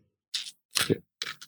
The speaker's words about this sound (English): There's a nice clicky clack Foley for everybody. Yeah, some good dice sounds. Good dice sounds.